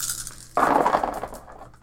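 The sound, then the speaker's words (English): A handful of game dice, including five compatibility dice, are all rolled down a dice tower in a sudden burst of hard plastic rattling and clicking, which quickly thins into a few scattered ticks and fades out. “Do you want me to roll all of them? Yes, you can roll all of them.”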